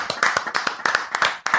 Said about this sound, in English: And guys, before we do anything, I want to give us a little clap. This is our 50th episode. Let's hear it.